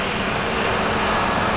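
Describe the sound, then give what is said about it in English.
People outside use a buzzsaw, which cuts with a loud, steady, grinding roar that holds constant from start to finish, with no pauses and no voices. “Oh, you're gonna hear some people doing buzzsaw work down there.”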